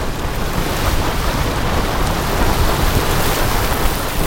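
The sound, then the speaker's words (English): Grand Geyser erupting in Yellowstone, shooting water over 200 feet high. A loud, steady hissing roar of rushing, spraying water that sounds like a heavy downpour and holds unbroken throughout, with no voices. “The big one shoots up over 200 feet. This is Grand Geyser.”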